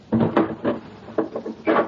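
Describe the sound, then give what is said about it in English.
A door is pushed shut and locked, a quick series of wooden thuds and clunks followed by a final solid knock, with no voices. “Close the door. Lock it, Gina.”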